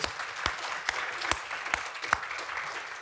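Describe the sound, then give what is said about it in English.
A crowd applauds with steady, dense clapping at moderate volume, a few sharper individual claps standing out roughly every half second, with no voices heard. “And it deserves a round of applause, right?”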